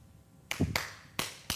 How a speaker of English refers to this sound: Trust me, folks. You do not want me to play drums in the church. Your clapping would be like this.